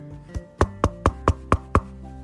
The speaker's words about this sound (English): And they knocked on the door.